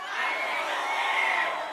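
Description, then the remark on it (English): An audience shrieks their choices all at once on a count of three, a dense, overlapping roar of many voices, loud and sustained for a couple of seconds with no single voice standing out. “All right, on the count of three, you just got to shriek your thing.”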